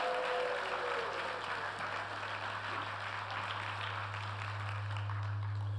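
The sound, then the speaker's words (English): An audience breaks into sustained applause for Jesus on his birthday, a dense wash of clapping that holds steady for several seconds over a low, constant hum. “Round of applause for Jesus, absolutely, on his birthday.”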